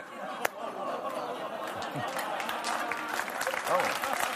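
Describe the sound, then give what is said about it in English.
An audience in Los Angeles boos, the low jeering voices soon swallowed by a steady wash of clapping and crowd noise that holds loud for several seconds, with one sharp clap standing out early. “Booing into applause.”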